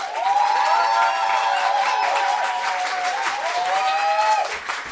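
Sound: audience applause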